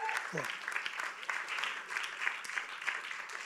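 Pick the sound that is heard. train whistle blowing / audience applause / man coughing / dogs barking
audience applause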